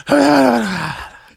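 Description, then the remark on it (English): A voice imitates another person's heavy breathing with one loud, drawn-out groaning exhale into the microphone, lasting about a second and trailing off, with no words spoken. “But so I can cut down on your goddamn breathing. That's what you sound like.”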